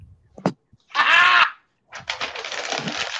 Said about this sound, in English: Oh, God. Scumpling paper. Can you tell what it is? Yeah, wait, screwed up paper,